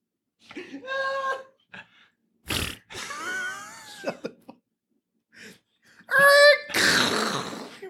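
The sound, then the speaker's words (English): A person makes a string of buzzy, sputtering mouth noises imitating a fart, several loud bursts with short pauses, ending in a longer, louder raspberry-like blast. “We just went for one fart noise, baby.”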